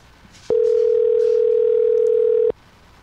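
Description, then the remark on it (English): A phone line rings once: a steady, loud electronic ringback tone lasting about two seconds, heard through the handset with faint background hiss before and after and no talking, before the call goes to voicemail. “I hope it doesn't go to voicemail.”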